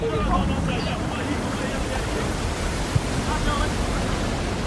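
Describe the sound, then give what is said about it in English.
A small boat pushes through open sea waves, with a steady wash of cold salt spray and surf over a low, continuous rumble, broken by a couple of brief thuds as the hull bucks against the waves. “I felt the cold salt spray and buck of the boat plowing through waves.”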